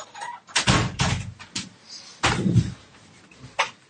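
A door is swung and pushed closed nearby, giving a series of bumps and rattles with two heavy, low thuds and a final sharper click, with no talking.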